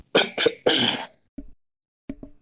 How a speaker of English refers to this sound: We might, if he is coughing, we might be making it worse. We might be making him laugh, and then he's starting to cough more because of that.